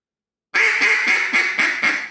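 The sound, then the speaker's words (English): A rapid series of loud, harsh duck quacks from a coarse-style duck call, about six evenly spaced blasts in quick rhythm, coarse-toned, with no talking. “Three completely, totally different ducks that sound all awesome.”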